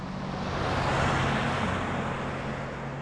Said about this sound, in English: Thought I'd pause whilst an enormous great truck drives past me. When I say truck, it's one of those Chevy things that, you know, and it looked like it had sort of double wheels at the back, so sort of four-wheel axle, like a truck.